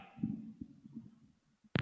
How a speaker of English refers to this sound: it's been way too long since I've cracked my neck for you with this effect on it